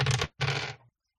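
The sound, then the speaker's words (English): Hunger dice clatter in two quick rattling bursts, a short one then a longer one that trails off, fairly loud, with silence afterward, rolled for a composure and drive check in a game. “Make sure I have my hunger dice.”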